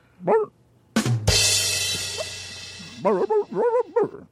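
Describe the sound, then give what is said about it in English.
A person imitates a dog with one short bark, then a burst of loud rushing noise, then a quick run of four or five yapping barks. “Try to communicate something to Eric, but all you can do is bark.”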